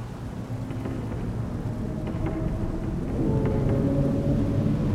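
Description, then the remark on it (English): Steady rain hisses over a deep, continuous rumble of thunder, growing slightly louder toward the end, with no voices present. “The fire on the ship has spread, in spite of the rain, and by its light, you see a movement in the water beside you that draws your eye.”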